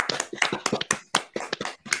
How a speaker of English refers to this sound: Messi winning the World Cup. Messi goal. Round of applause for the GOAT.